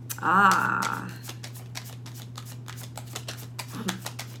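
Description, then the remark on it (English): Tarot cards being shuffled: a steady run of quick, crisp slaps and riffling clicks over a low electrical hum, with a brief tonal murmur near the start. “I'm gonna finish the shuffle, and let me see.”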